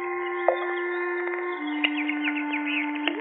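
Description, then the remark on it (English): Small birds playing in a fish pond in the evening chirp in quick, repeated tweets over a steady droning hum, the calls growing busier toward the end. No splashing stands out, and no one speaks. “Birds playing in the fish pond.”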